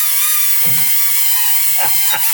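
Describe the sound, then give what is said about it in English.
A cheap toy drone, missing a rotor blade, buzzes in a steady, high-pitched whine that holds loud and unbroken throughout, with a few brief low rumbles and knocks underneath. “That was my drone.”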